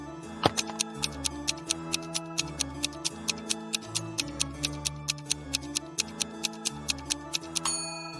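A steady clock ticking, sharp regular clicks about twice per second, plays over a low sustained musical bed like a countdown timer for a brain-teaser puzzle, with no voices.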